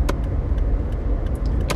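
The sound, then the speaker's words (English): A green car drives past, its engine rumbling with a steady, low roar throughout with a few faint clicks on top, and no one speaking. “Oh, that's a nice green car. I'd love to know what kind of car that is. That might be a Lamborghini.”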